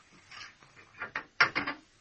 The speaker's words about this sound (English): I'll unlock the cell door.